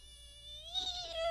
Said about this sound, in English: A squeak.